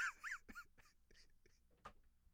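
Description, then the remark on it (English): A few soft, high-pitched whimpers from dogs, quick rising whines at the start, followed by faint shuffling and a small thump amid quiet. “Sorry, dogs.”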